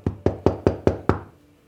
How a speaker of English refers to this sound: And at this point, you hear a big knock on the door.